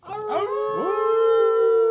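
A single wolf howl sound effect, loud, swooping upward in a couple of quick glides before settling into a long, steady, tonal note, heard on its own with no talking.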